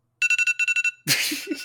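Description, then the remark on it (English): A phone timer alarm rings out as a quick run of about eight bright electronic beeps in a steady two-part rhythm, loud, then cuts off into a burst of harsh noise. “My timer went off.”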